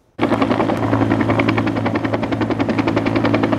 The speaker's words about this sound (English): It was a nonstop aerial attack as two helicopters bucketed the Strip Creek fire for several hours.